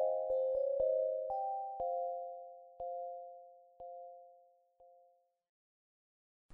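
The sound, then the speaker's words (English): A school bell rings alone, its clapper striking rapidly at first, then slowing to sparse, spaced hits before the steady tone fades out into silence. “The articulate sound of the school bell's conclusive note awoke me from my hazy hell.”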